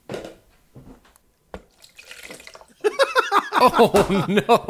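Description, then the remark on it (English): A cocktail is poured into a bucket, the liquid splashing and dripping in short, uneven bursts; after a few seconds a voice starts up and carries on over the pouring. “Poured it into a bucket.”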